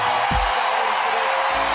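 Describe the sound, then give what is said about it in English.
A basketball arena crowd roars in a steady, loud wall of cheering after Tyrese Hunter's right-handed dunk on a run out, holding without a break, with a brief low thump near the start and no clear voices above the noise. “Listen to this crowd.”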